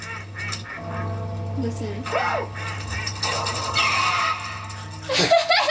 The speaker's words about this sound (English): The duck's getting like attacked. Wait, listen to when it dies.